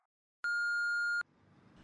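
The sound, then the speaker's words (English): A single steady electronic voicemail beep, clear, holding one pure tone for under a second and signaling the start of recording a message, followed by faint background noise. “Leave a message. Beep.”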